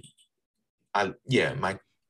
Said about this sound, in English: Bless you.